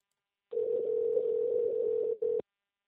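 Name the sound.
phone call ringing tone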